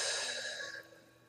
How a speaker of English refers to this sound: Sit back, relax, get your breathing to 6-8 breaths a minute. Breathe in, breathe out.